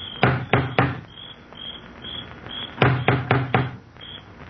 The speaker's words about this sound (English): An elderly man gets out and walks up the wide stone steps to the front door. He looks about uneasily, then lifts the huge knocker on the door.